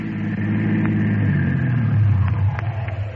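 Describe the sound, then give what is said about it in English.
A car engine rumbles, its low drone rising and shifting in pitch as the vehicle draws near and slows, then settles toward an idle. “how do we grab the car?”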